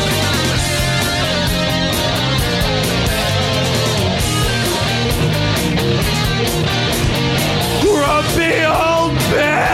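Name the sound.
man screaming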